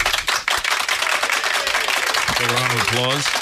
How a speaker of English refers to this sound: Applause.